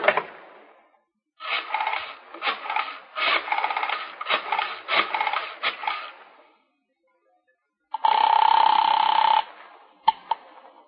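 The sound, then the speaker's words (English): A rotary telephone being dialed: several quick whirring, ratcheting bursts of the dial spinning back, then a steady buzzing ring tone and a couple of sharp clicks. No one speaks. “Alan, will you phone your mother or must I? All right. I'll do it.”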